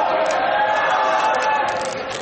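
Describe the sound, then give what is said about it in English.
A dense, steady roar of basketball crowd voices heckling during a free throw, loud and continuous, with jeering shouts blending into a broad wash of noise. “The Eagles crowd is working, even though, like, I don't really condone that.”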